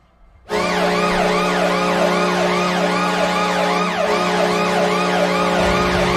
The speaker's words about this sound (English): I think Washington kind of gives it away with their they have a bunch of sirens going off. They do. They're the only one that have sirens anymore.